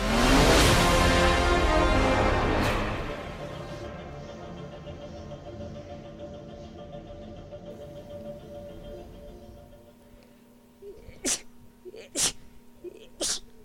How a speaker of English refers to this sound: Bless you. Thank you. Yeah. You sneeze 3 times, that means somebody's thinking about you.